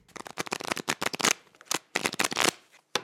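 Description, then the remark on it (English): Playing cards being dealt across a table by a dealer, a pair face down to each of five players: a quick, irregular run of crisp, papery flicks and slides in bursts, a short pause, then a few more and one last sharp snap. “In response, a card slid toward me.”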